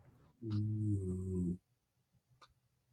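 A dog gives a single drawn-out, low bark that stretches for over a second, loud, then quiet background with a faint brief noise afterward.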